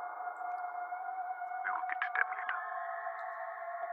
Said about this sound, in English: Follow the sound of the howling. It sounds blood curdling. I wonder if this is being picked up on this crude instrument I'm using to record sound.